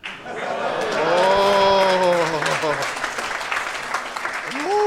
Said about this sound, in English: I am so confused right now. People are just clapping after sentences. I'm like, what the fuck is happening right now?